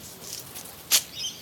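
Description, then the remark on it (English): A male satin bowerbird's courtship song as he dances at his bower with wings outstretched, shimmying on the ground to attract a female: a quick, sharp buzzing burst followed by faint, high chirping whistles, fairly quiet against a soft hiss, with no one talking. “I know I'm saying he and him, and that's because only the male bower bird builds the bower and sings and dances like this, and only the male has those satiny navy blue feathers.”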